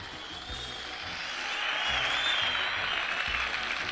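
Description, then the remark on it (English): Canned crowd applause from the Pocket Sitcom app plays on its own, a steady dense patter of clapping that swells slightly louder midway and holds, with faint cheering mixed in. “The crowd's not as into me, apparently.”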